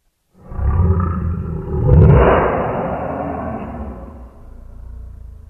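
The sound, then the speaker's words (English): A deep, monstrous growling roar, like a demonic lion, swells loudly and peaks near the middle before trailing into a lower sustained rumble. No voices accompany it. “Ooh, a demon lion monster growl.”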